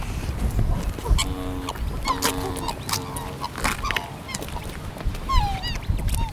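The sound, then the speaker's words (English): A swan family (mum, dad and a cygnet), released after being assessed, honk back and forth in a 'triumph' call while bobbing their heads, short, repeated nasal calls with stacked harmonic tones overlapping one another against a steady outdoor background rumble; a few higher squeaky calls appear near the end. “Yeah, and when they come together, so they do that call you might have heard where they honk at each other and they bob their heads up and down.”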